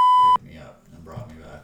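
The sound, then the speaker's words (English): A loud, steady censor bleep tone lasts about a third of a second at the start, then cuts off abruptly as people keep talking in the background. “You'll have to beep that out.”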